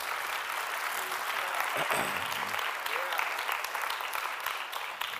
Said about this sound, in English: Let's clap our hands in the name of the Lord real quick.